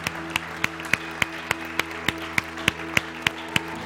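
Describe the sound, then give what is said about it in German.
An audience claps together in a steady, even rhythm, roughly three sharp claps per second, with a sustained low tone humming underneath and no voices. “Komm, lasst uns Ihnen einmal einen kräftigen Applaus geben.”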